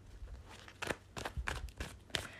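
Tarot cards being shuffled: five or six quick, papery swishes and snaps in an uneven rhythm, fairly soft, with no one talking.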